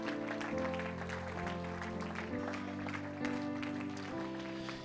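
An audience claps steadily throughout, the scattered applause layered over sustained, swelling chords of background music that keep playing underneath.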